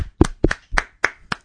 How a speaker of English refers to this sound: Can we get a round of applause? Can we get a little clap for...